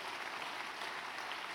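A crowd applauds in a steady, dense wash of clapping that holds at an even level throughout, with no voices standing out above it.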